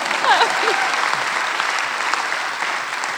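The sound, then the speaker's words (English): An audience applauds a question steadily, a dense wash of clapping that holds at an even level throughout, with a few faint voices and a brief whoop near the start. “You can totally clap for it if you want.”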